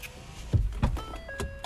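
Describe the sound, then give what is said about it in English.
Truck power windows roll with a steady electric motor whine and a few soft mechanical thumps as the glass moves, fairly quiet, with no talking. “Had to roll the windows.”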